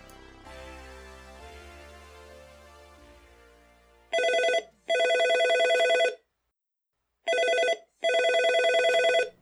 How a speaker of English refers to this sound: In a moment you'll hear a phone call tone, or a phone tone, or a ring tone, or however you friggin' say that shit. And then it will begin. In between, I will talk about the next telemarketer call and play another ringtone.